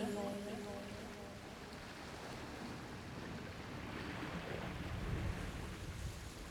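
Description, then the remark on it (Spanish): Steady rushing ocean waves wash in and out at a constant moderate level, a broad watery roar with a faint tonal hum at the start and a slight swell near the end. “El sonido de las olas recorriendo.”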